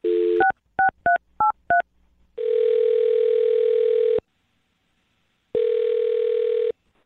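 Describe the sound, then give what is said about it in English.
A brief tone, then five quick touch-tone beeps as a woman's phone number is dialed by a radio morning show host, followed by two long ringing tones separated by a pause. The sounds are clear, with no talking. “All right, I'm going to dial her phone number right now and see if we can figure out what went wrong, okay?”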